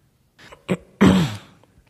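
A man, a reporter, coughs: a couple of short, rough throat bursts, then one louder, harsh cough that trails off into a brief voiced rasp.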